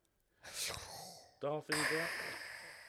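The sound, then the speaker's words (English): A raspy, hissing mechanical respirator breath, in then out, seemingly imitated by a voice, with a brief buzzy vocal tone between the airy inhale and exhale. “Darth Vader. Breathing sound. This is a 10-hour loop of it.”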